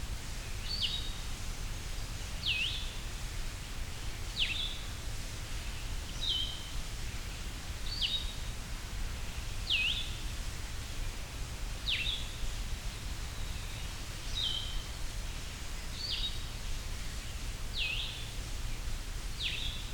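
A Blue-headed Vireo sings a steady series of about eleven short, high, slurred whistled phrases at Hector Falls, each separated by a pause of roughly two seconds, over a constant low background rumble.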